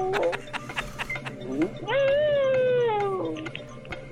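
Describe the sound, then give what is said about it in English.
A pet dog named Holly lets out a long, wavering howl lasting over a second, rising slightly then sliding down in pitch, preceded by a couple of short yelps and scattered clicks, with no one talking. “Listen, I can make Holly howl.”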